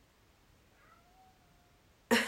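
A single drawn-out cat meow, faint, rises and trails off over quiet background noise before a sudden loud burst of sound cuts in at the very end.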